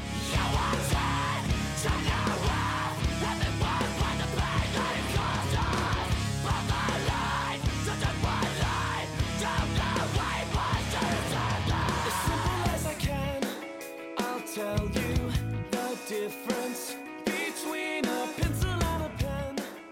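Intro of a heavy song: distorted music with harsh, abrasive screamed vocals over a dense wall of guitars and drums; around two-thirds through, it thins into sparser, punchy stabs.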